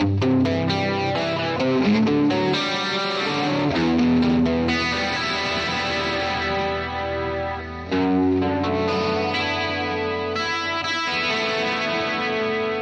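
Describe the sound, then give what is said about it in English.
An electric guitar, switched to the middle pickup position, rings out chords through a chorus effect sent by James G, the tone shimmering and slightly wavering as the strums sustain, with a brief dip before the playing resumes. No one speaks. “Sounds really nice with this guitar.”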